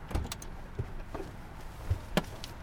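A police officer climbs out of his police cruiser in a gas station parking lot by a freeway on-ramp: a few scattered clunks and clicks from the door and seat, with faint rustling between them and no voices.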